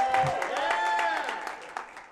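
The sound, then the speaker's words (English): An audience breaks into brief, steady applause during a sermon, a dense patter of many hands clapping together, with a few voices cheering and whooping over it before it starts to thin out. “You can clap for that.”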